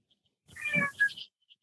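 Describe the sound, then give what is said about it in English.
A single cat meow, fairly clear, rising then falling over about a second, with a short chirpy tail at the end, from a cat on a table trying to eat an apple. No one speaks during it. “Sorry, my cat is trying to, he's on my table and he's trying to eat. my apple.”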